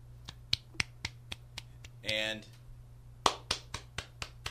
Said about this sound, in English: We're all just clapping. We're clapping. Do you think people will be able to recognize our claps?